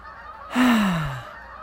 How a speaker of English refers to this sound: These are my geese. These are the ones that are like, yeah, we'll get there in a while. Hold on. We're busy doing something else.